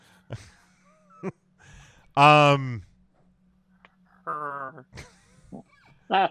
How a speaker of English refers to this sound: That sounded like a cat making a noise. The cat's hungry,